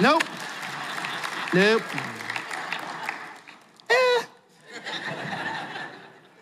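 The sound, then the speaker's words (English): Light, scattered clapping from an audience at Sugar Loaf runs steadily through, mixed with short bursts of laughter and chuckling that rise above the patter a few times. “See, when Paul's talking, and now we get the pity claps.”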